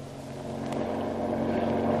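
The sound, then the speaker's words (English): A speedy patrol boat's engine drones steadily on the water during a hunt for a submarine, a low rumbling hum with harmonic tones, building slightly in loudness as it runs, with no voices. “The authorities put at his disposal a speedy patrol boat, and the hunt for the submarine is on.”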